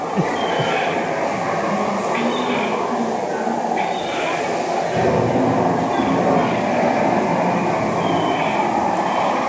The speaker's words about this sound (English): I'm waiting for this ride attraction boat to stop.